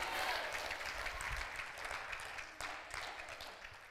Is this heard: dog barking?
no